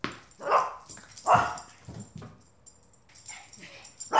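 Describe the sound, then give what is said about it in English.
Ponyo, a newly adopted dog, lets out two sharp, loud barks about a second apart, followed by quieter yips and whimpering noises that trail off, with a final bark starting at the very end, in an art studio. “Beja died recently, and she adopted a new dog, Ponyo.”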